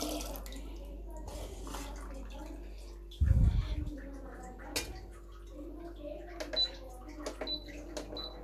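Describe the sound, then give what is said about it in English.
Water runs steadily into a water can with a continuous hiss as it is filled, joined by a brief low thump and a few light clinks and ticks. “So, as you can see, I am just filling up the water can.”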